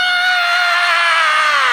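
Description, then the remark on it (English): Loud, sustained high-pitched screaming from a crowd of standing children in an audience, a dense wall of shrill voices lasting a couple of seconds with no pause. “Now, if you're a kid in the house, give me a crazy scream.”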